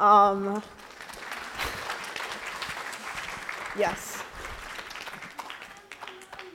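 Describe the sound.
An audience applauds a guest speaker at the end of a talk, a dense wash of many hands clapping for several seconds after a brief spoken word at the start, then gradually thinning out toward the end.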